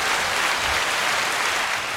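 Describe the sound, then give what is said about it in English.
A steady burst of applause from a crowd, many hands clapping together in a dense, even wash of sound that holds for a couple of seconds with no voices, for a wrestling team's win over Northfield. “That gets a round of applause, I think.”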